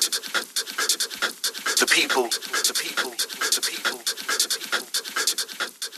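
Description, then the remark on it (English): Heavy, rapid breathing pants in a steady rhythm throughout, fairly loud, each breath a short airy burst with barely any pause between them; a sample from the original recording session, used in a music track. “one thing that I think was really important from the start in … was the breathing”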